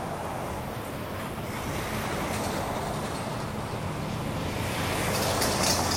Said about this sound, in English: Trucks are rolling in on Saturday morning. They must be hustling to finish up some houses.